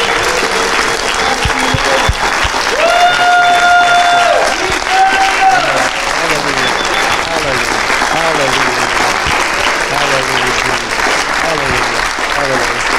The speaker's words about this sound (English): Let's stand to our feet. First, I just feel like we need to give the Lord a clap offering, right?